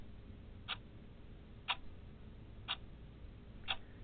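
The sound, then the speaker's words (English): A ticking clock timer effect: four crisp, evenly spaced ticks, one per second, standing out clearly over a low background hum with no voices. “I had to put the clock on you, man.”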